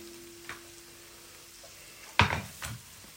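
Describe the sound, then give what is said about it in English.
Egg and chorizo sizzle softly in a frying pan while a utensil scrapes and stirs them, with one sharper scrape near the end and the faint steady hum of a microwave warming a flour tortilla underneath; no one speaks. “We're going to turn off the main part of the frying pan there.”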